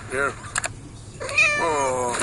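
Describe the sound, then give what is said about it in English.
A cat in a video meows twice, with a short rising call followed by a longer drawn-out one, interrupted by brief clicks and rustling in between, clear. “Let's watch cat videos.”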